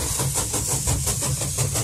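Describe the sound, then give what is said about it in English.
A chugging train sound effect: fast, steady rhythmic puffs of hissing steam over a continuous low engine rumble, fairly loud and unbroken, with no voices. “Chugga-chugga. That's fine. It still is a train noise.”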